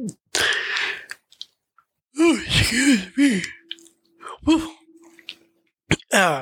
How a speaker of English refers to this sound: Sorry for that yawn.